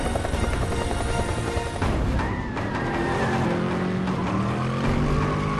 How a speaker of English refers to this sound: They notch up the chase. It's like, okay, now we got a chase scene. Now we're adding a helicopter.